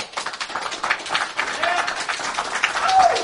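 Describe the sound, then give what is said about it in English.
An audience at an audio show claps steadily for a few seconds as a vote in place of a show of hands, a dense wash of many hands that swells slightly toward the end, with some crowd voices mixed in. “We'll do clapping, I guess, because it's an audio show, right?”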